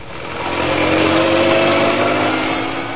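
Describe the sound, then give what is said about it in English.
A car engine roars loudly and steadily for a few seconds as the car speeds out of the gates of Scotland Yard and out of London into Essex, swelling up near the start and easing off slightly at the end, with no voices. “Inspector Manson and Sergeant Wright left Scotland Yard, careening out of the gates on two wheels, and roared out of London and into Essex.”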